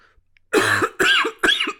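Three harsh coughs in quick succession from a person who cannot stop coughing, each a loud explosive burst with a raspy tail, separated by brief pauses.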